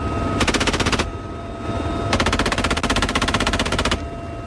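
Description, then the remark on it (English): Two long bursts of rapid machine gun fire from helicopters shooting at targets on an island during a military exercise, each a fast, even stream of sharp cracks lasting a second or two, over a steady low rumble like an engine. “Out at sea, helicopters would fly out and open fire with rockets and machine guns at targets on an island where, under the scenario, enemy forces were landing.”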